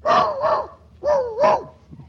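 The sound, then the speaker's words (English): A dog named Fletcher barks in two quick pairs, four sharp, slightly whiny yaps with a short pause between the pairs, and no one talking. “Nice little doggy, what to do with the dog?”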